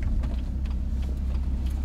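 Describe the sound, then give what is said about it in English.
A steady, low engine rumble from a car driving, heard as a continuous deep drone with faint road noise and no voices. “It's a nice car, isn't it? Did you have fun? Bro, that was sort of flying.”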